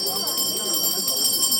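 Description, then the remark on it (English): In a room of the Lama Temple in Beijing, a monk's low, steady chanting of prayers runs continuously beneath bright, sustained ringing from a bell he rings, the metallic tones hanging evenly over the voice at moderate loudness. “In one corner, there's a room where a monk chants prayers and rings a bell.”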